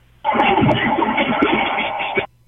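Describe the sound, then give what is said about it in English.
A phone line breaking up during heavy rain: a two-second burst of harsh, garbled, band-limited static and warbling fragments that starts abruptly and cuts off just as suddenly. “Your phone was acting up on you.”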